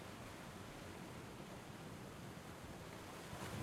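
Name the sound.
ocean waves and wind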